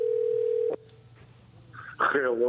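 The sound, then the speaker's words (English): A steady telephone dial tone hums for under a second and cuts off, followed by a quiet pause with faint clicks before a voice picks up and starts talking. “Or if he'll answer his phone.”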